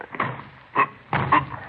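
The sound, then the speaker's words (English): Men strain against a locked door, producing three bursts of heavy thumping and rattling at uneven intervals, the last one longest. No voices are heard. “Well, give me a hand, Frank. We'll try to force it.”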